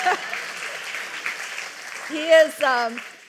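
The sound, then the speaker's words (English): A crowd applauds steadily, a broad wash of clapping from many hands, and near the end a voice rises briefly over the fading applause. “You can clap or not clap.”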